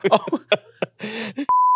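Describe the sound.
A few quick bursts of talking, then a loud, steady, high-pitched censor bleep cuts in abruptly and holds as one flat, unbroken tone to the end.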